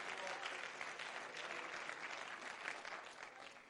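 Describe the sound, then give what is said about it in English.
An audience claps hands together in praise to the Lord, a dense, steady wash of many overlapping claps that holds at an even, fairly loud level for a few seconds without any voices on top. “Clap your hands to the Lord and let's give him praise.”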